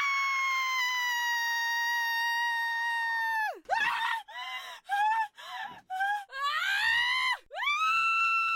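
A woman screams loudly and shrilly, one long sustained shriek held for several seconds, then breaks into a series of short, ragged screams and cries before a final rising wail, close and piercing.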